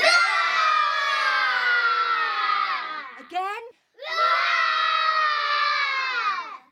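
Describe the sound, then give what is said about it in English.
A group of voices, many sounding like children, let out a long, loud roaring shout in imitation of a lion, break off briefly with a rising squeal, then roar together again. “I'll roar really loud and wake up Sky God and tell him we want the sun back.”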